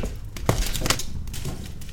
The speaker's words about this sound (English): I'm going to put another log on the fire here. You poke this up a bit.